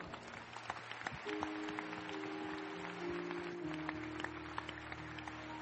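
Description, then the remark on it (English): A crowd gives the Lord a clap, clapping steadily and densely throughout in a continuous wash of overlapping hand claps. Sustained low keyboard chords hold underneath, and no one speaks. “Can you give the Lord a clap?”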